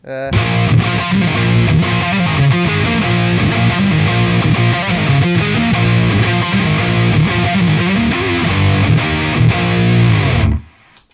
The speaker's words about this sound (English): Is that a different guitar setup, or is that, that sounds to me like a neck pickup, that main riff yeah.